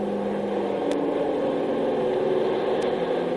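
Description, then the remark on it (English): A Navy airplane flies over an island, its steady, droning engine humming without pause, the low rumbling tone holding an even loudness throughout, with no voices. “That's the third Navy plane I've seen over the island in the last 24 hours.”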